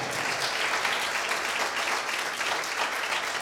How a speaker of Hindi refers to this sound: हम बहुत ही धन्यवादित हैं अपने प्रभु यीशु मसीह का, उनके लिए हम ताली बजाएं।